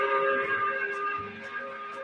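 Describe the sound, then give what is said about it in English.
A 5 o'clock whistle blows one long, steady blast, a loud chord of sustained tones that holds unbroken for about two seconds with no voices over it. “We do it by blowing the 5 o'clock whistle.”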